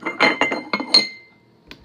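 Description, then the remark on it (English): Teacups clink together for a tea break in a quick run of bright, ringing chinks, about seven taps with lingering high tones, then a short pause before one last lighter clink. “I think we should have a cup of tea.”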